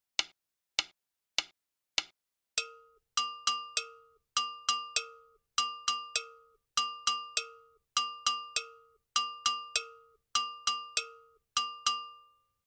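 Four sharp clicks count in, then a gankogui double bell plays its part in a drum ensemble arrangement alone, looping a bright metallic pattern that alternates high and low tones in quick clusters, steady and unvoiced.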